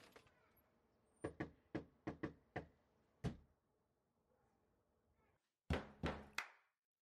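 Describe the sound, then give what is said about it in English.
Sharp knocks on a wooden door tapped out in a syncopated, drum-like pattern, the way a drummer would knock, with short bursts of beats separated by pauses, then a quick final flurry. No voices. “So this guy, he did a, it's like, it's almost kind of a take on that where it's this is how drummers knock on doors.”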